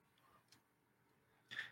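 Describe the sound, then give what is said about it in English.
Small plastic clicks from a fidget toy, a couple of faint taps followed by a sharper, louder clack near the end, with no one talking. “I'm just realizing it's going to be really bad audio because I keep playing with my fidget toy, so you'll just hear a lot of clicking and clacking.”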